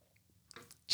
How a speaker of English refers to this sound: Sorry, I'm trying to drink my water, guys, because it is 95 degrees. It's 101 today here in Houston.